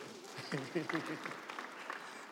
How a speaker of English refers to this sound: Can you clap hands for yourself?